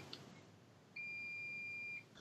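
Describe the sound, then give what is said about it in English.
A single sustained electronic beep from a washing machine signalling the end of its cycle, a steady high tone lasting about a second, clear and moderately loud, with no talking. “So it's not my fire alarm, it is literally my washing machine, I'm sorry.”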